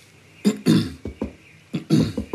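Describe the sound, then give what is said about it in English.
A person gives a couple of polite, throat-clearing coughs to catch someone's attention at a door, two short bursts each time with a brief pause between, and no talking around them. “Don't forget to cough. You always have to cough when you're politely trying to catch someone's attention.”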